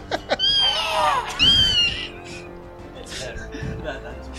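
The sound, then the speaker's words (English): A person imitates an eagle's scream: two shrill, wavering squawks that sound more like a cat's yowl, loud, followed by quieter scattered vocal noises. “It's more like a squawk. That sounded like a cat.”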